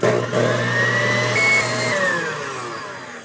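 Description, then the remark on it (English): An electric mixer whirs steadily as it beats a mixture for a few minutes to cool it to about 100 degrees: a loud, continuous motor drone whose pitch wavers and sags slightly, with no talking. “I'm going to beat this for just a few minutes to get it to where it's a little cooler.”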